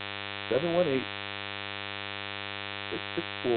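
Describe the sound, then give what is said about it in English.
A steady electrical static hum on a telephone line, with buzzing harmonics running continuously throughout, fairly loud, with brief bursts of garbled, distorted noise breaking through near the start and again toward the end. “I want to try to get this static up out of here.”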